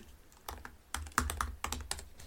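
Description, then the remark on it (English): Rapid, irregular clacking of keys on a computer keyboard, fairly quiet, with uneven bursts of keystrokes and no voices. “There, you got your typing sounds.”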